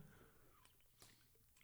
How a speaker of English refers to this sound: As we both take a sip of water at the same time and look at each other's eyes deeply.